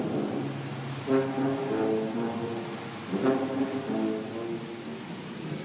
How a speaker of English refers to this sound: It's raining, traffic's crazy, and I just walked or drove through a tunnel where a man's playing a tuba. The Tuba Man.